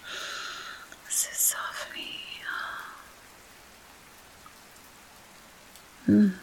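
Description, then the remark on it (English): Soft, steady rain patters throughout, a dense hiss of raindrops. A whispering voice drifts over it in the first few seconds, and a brief low thump sounds near the end. “The raindrops falling.”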